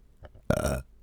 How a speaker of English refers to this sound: Oh. Burps are cool because then it's like Burps are neat because it's like, it's your body being like, hey, remember what you just had an hour ago? Hey, remember that thing you ate an hour ago? Here's a little taste. Here's a little reminder.